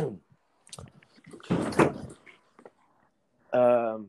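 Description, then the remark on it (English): A door swings and shuts with a muffled, rumbling thud, followed by a moment of quiet and then a brief voiced sound from someone. “Yeah, let me close the door.”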